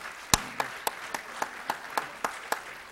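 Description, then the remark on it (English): Steady, evenly spaced hand claps, about ten sharp slaps in a regular rhythm over a soft background hiss, with no talking. Applause from a church audience on a Sunday, welcoming a newborn baby as the newest member of the church. “Let's give a clap to the newest member of the church.”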